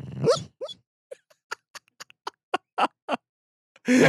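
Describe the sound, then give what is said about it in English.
A sleeping dog named Herb breathing heavily: a brief whimpering whine, then a string of short, uneven snuffling puffs, ending with a loud, deep breath. No one speaks. “What you're listening to is Herb sleeping. It's a big, deep breath.”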